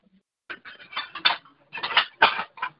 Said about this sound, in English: Get some dishes rattling.